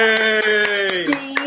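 Steady, rhythmic hand claps, about seven sharp beats at an even pace, ring out over a long, held vocal tone like a drawn-out cheer, applauding a woman who finally got her dream job.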